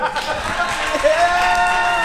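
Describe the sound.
A crowd claps and cheers steadily for about two seconds for the 2006 Adam Sandler movie Click, a dense wash of hands and voices with a rising whistle cutting through midway.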